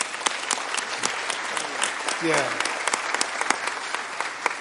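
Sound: audience applauding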